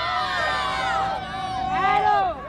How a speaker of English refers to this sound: The bell hasn't rung yet, but at 2 o'clock, about 20 students gradually trickle out of Green Central High School. As more kids come and join them, there's cheering.